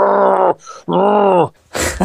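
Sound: voice imitating an alligator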